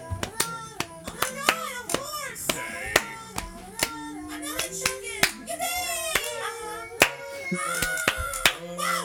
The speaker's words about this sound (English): Wait, did we do clapping in there?